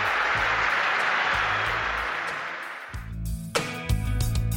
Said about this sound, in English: Here come the Addicts, down to our left-hand side. And you can hear the applause that greets them as they hit the valley surface